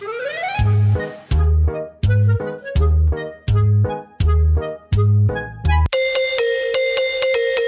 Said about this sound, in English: Oh, the doorbell again. Yeah, who the fuck is that? Just answer it. Go and answer it.